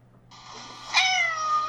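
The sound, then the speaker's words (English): A single drawn-out cat meow, clear, rising sharply in the middle and then gliding down in pitch as it trails off, with a faint steady hum underneath, recorded by an app. “Oh, it records his meows.”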